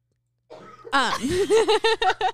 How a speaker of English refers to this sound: Sorry, I had to cough, and I did that anyway.